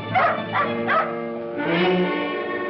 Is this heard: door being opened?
no